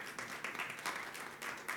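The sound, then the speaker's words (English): An audience at Unity of Farmington Hills applauds the musicians, a steady wash of many hands clapping at once with slight surges, continuing for a couple of seconds without any voices on top. “Can we give them another hand?”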